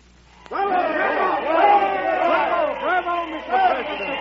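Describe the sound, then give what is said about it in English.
A crowd bursts into loud cheering all at once after the President's speech, many voices shouting and whooping together in a dense, sustained roar that holds steady for several seconds without fading. “Let's step out of this crowd.”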